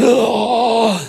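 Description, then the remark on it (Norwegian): A voice imitates a sudden gasp, drawn out into a groaning, voiced intake that lasts about a second, loud, with the pitch sagging at the end. “Og så kommer han til livet med et, liksom et gisp eller et eller annet.”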